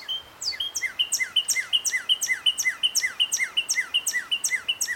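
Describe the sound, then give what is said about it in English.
A northern cardinal sings a fast, steady series of clear, downslurred whistled notes, repeated about four times a second for several seconds, with no voices or other sounds. “Northern Cardinal. One of my favorites.”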